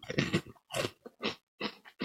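Close, crisp crunching as something brittle is bitten and chewed, about six sharp bursts in an uneven rhythm with brief pauses between, fairly loud and without any talking.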